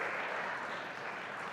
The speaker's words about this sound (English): We got to clap again for ourselves, for being here, for you, for making it. We're clapping for our Zoom people who are, Zoom is still here strong.